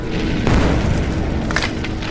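A heavy explosion of a corpse hit by a Moonbeam spell erupts with a deep, loud boom, then a dense rumbling roar that carries on for about two seconds, with a brief sharper crackle partway through. No voices.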